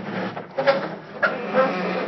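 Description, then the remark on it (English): A garage door is eased open, grinding with a rumbling mechanical drone punctuated by several short, high squeaks of unoiled metal, steady over a couple of seconds. “I'll open the garage door real easy.”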